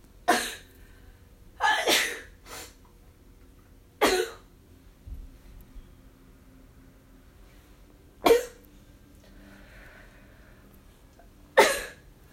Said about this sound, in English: I'm very sorry about that sneeze fest.